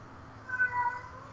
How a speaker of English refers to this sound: Yo, that cat is going nuts. I know, and I... And you know what it is? It's literally because I'm in here talking. Like, yeah, man, let her in.